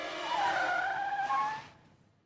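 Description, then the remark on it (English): A car on a road skids, its tires screeching in a long, loud skid lasting over a second, the squeal wavering slightly in pitch before cutting off abruptly and leaving a faint rumble as it fades. “He's going to slide right into the road. There's a car coming right his way.”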